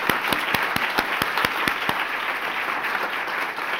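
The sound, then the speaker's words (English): Audience applause, a steady wash of many hands clapping with a few sharp, distinct claps standing out near the start before it settles into an even, sustained ovation, given for Ms. Verna, a local BBC team member. “Yes, please clap for Ms. Verna, because she is excellent.”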